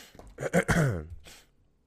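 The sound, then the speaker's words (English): A man with mucus in his throat clears it with a thick, phlegmy rasp, a couple of quick harsh bursts trailing into a low guttural rumble, fairly loud. “Shit, hopefully I don't do that the entire episode. I got muckles, dude. I got to blow my nose.”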